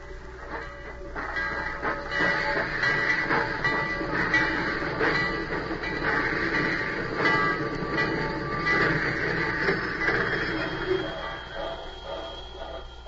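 A train rolls steadily along the rails, its continuous rumble and metallic rattle filling the whole stretch at an even loudness with no pauses.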